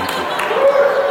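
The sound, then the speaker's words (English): Audience applause: a dense, steady wash of many hands clapping for just over a second, fairly loud, with a brief sustained vocal note rising out of the crowd partway through. “That deserves a round of applause, absolutely.”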